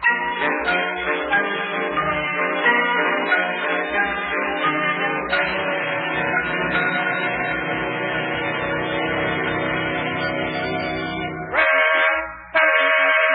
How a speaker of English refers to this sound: Oh, I'll bet that's Yuki in the wedding car honking the horn outside.